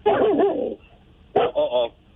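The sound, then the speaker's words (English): Dogs barking: a long, drawn-out bark followed after a short pause by two quicker barks in a row, fairly loud, with no talking. “Dogs are not happy.”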